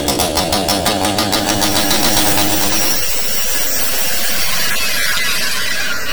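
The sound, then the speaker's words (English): A loud chainsaw revs with a pulsing, buzzy engine drone, then turns into a rough, gritty roar as it bites into the wood of a tree and keeps cutting steadily. No one speaks. “And you should have brought a chainsaw.”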